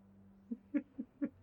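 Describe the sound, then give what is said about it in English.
A bird hoots four times in quick succession, soft low calls with a faint steady hum underneath, clear with no talking. “Bird.”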